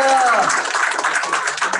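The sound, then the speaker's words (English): A crowd applauds, a dense, steady wash of clapping that stays loud for the whole two seconds, with a brief high whistle or cheer sliding down at the start. “Let's hear a drum roll and an applause for Kirk is all his right.”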